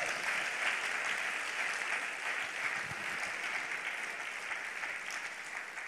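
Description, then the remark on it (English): An audience claps together for God Almighty in steady, dense applause, a continuous crackle of many hands that holds an even loudness for several seconds with no voices on top. “Let's give God Almighty a big hand clap, can we?”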